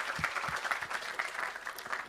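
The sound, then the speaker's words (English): An audience applauds steadily for participants who have just taken part, many hands clapping in a dense, even patter that holds at a fairly constant level throughout, with no voices standing out. “Give them a clap.”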